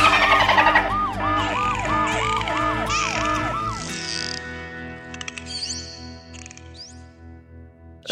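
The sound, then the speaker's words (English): A loud warbling alarm siren, played as a short sound-effect sting, sweeps up and down in quick repeated cycles for a few seconds, then gives way to fainter electronic chirps and tones as it fades out. “can we get a quick sting of the dolphin girl alarm just so that that's in the show?”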